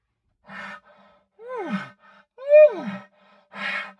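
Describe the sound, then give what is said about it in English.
A person vocally imitates an elk's whiny call: breathy bursts framing two rising-then-falling squealing whines, the second louder and higher, with no speech. “and they'll make that real whiny sound. I've heard mm-hmm. elk do that.”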